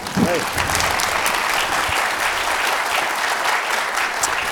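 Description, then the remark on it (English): A large sold-out audience at a talk about American political parties and polarization applauds steadily, a dense, continuous wash of clapping that stays loud and even for several seconds, with a brief voice heard near the start. “What a great crowd.”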